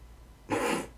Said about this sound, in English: A cat snoring.